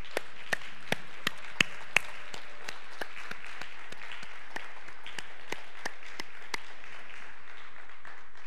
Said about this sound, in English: Now, today is Father's Day, and fathers deserve great honor. And in fact, if you're a father today, would you please stand so we can honor you with our applause? All the fathers in the room, please stand up.